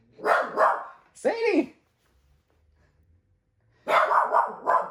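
A dog barks loudly in a writing room: a quick pair of barks, a single sharper bark, then a short pause before another burst of barking.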